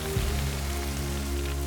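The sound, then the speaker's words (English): Big jets of water sprayed at a fire by Flynn the fire engine spray in a steady, dense hiss that holds for a couple of seconds, with a low, even hum running underneath and no voices. “Flynn sprayed big jets of water at the fire.”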